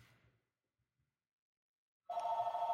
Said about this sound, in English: This is real life. We're live and the phone is ringing, and that's okay. It's going to stop ringing in a second.